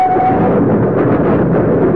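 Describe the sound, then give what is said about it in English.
A steady, loud rumble of a train riding along the rails from Dover up to London, with continuous low clatter and a faint tonal whine at the start, heard from inside a compartment with no talking. “He is now riding a train from Dover up to London.”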